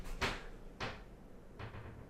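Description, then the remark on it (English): A cupboard door bangs and rattles three times in quick, uneven succession as a cat paws at it, trying to get in, each knock a little softer than the last, with no voices. “She's trying to get in the cupboard, of all things. I'm like, what is that noise?”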